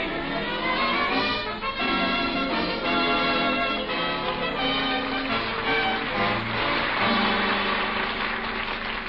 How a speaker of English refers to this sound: Hey, pipe down! Cut out that noise! Curfew! Hey, who's making all that noise down there with that bell? Curfew!